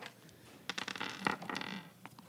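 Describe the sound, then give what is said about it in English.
The Curse of Strahd book being opened with papery rustles and crinkles, a quick run of soft, dry crackling page sounds with a few sharper flicks, fairly quiet and with no talking. “He's opening the Curse of Strahd book, guys.”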